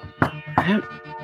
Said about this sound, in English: So, you wind up outside of an apartment block. It's the San Diego Housing Federation, and you have an apartment number. Alright. Just nice, firm, but polite knock.